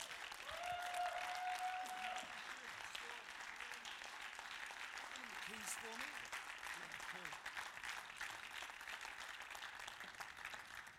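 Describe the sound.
A large audience at a church worship service claps steadily in a dense, sustained wash of applause for a worship leader, lasting the whole stretch, with a brief whistle near the start and faint voices and cheers mixed underneath.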